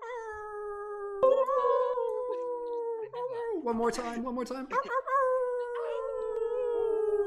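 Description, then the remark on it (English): Several people howl together like wolves for the full moon, long sustained overlapping tones sliding slowly downward, with a brief rougher stretch of mixed yelps midway and a short spoken phrase near the start. “So I'm just going to unmute everybody real quick and we'll just do a quick little wolf owl.”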